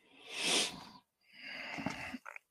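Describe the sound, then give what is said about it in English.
Two heavy, hissy breaths blown into a microphone, a long exhale followed by another rough, noisy breath ending in a couple of quick sniffs or catches, with no talking. “First off, who's breathing like they actually need a nasal cannula?”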